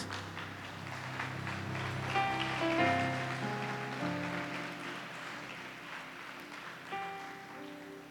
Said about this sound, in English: Stand to your feet, everybody, and clap for Jesus.